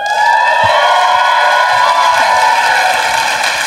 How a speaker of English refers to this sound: I want to ask a question of the audience. If you could cheer if you listen to the podcast.